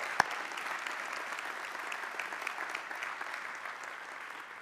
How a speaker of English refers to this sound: Come on, give the Lord a hand clap for that.